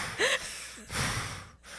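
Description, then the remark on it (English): A person imitates a dog's heavy, snorting breathing: a few raspy, noisy huffs and rough inhales, moderately loud, with a brief squeaky wheeze at the start and no speech. “Everybody's quiet and everybody's like, is somebody breathing into the microphone?”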